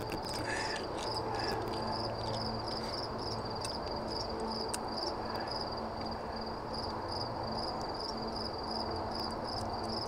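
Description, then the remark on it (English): A steady chorus of crickets chirps continuously, with a high sustained trill layered over a dense, constant background of insect noise, no voices present. “Literal crickets, though.”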